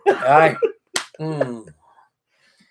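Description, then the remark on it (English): A single sharp hand slap, like palms patting a tortilla, cracks out loud and crisp between two short bursts of voice, followed by a quiet pause. “And the slapping sound. Yeah. Just like if you don't make it slap, it won't be good.”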